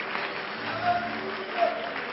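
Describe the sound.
A standing audience claps their hands unto the Lord in a dense, continuous wash of applause at moderate loudness, with faint voices mixed underneath throughout.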